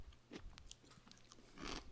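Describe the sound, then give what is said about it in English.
Crunching of dried apple chips, a few irregular crisp bites and chews with a louder burst near the end, no talking. “They are very crunchy.”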